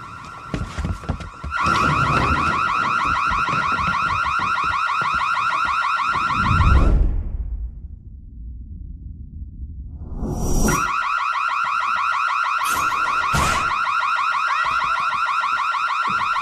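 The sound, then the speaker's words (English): A smoke alarm, set off by cooking left unattended, blares with a loud, shrill electronic tone. It cuts out briefly partway through, then resumes just as loud. No one speaks. “So yeah, the fire alarm goes off, because don't start cooking stuff and then go outside and talk to your neighbor for an extended amount of time.”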